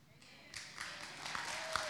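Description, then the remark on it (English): A crowd in a church breaks into applause for the pastor's wife. The applause swells after a brief pause and continues as a steady, dense wash of clapping, moderately quiet. “You better clap for her, because she's had to put up with me for 26 years.”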